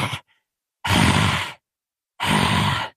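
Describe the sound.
A voice imitates the raspy breathing of approaching clawed monster creatures: two long, loud, gravelly breaths, a brief rough exhale at the start, with short silent pauses between them.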